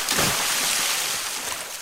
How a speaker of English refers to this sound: Oh, that sounded like a belly flop, honestly.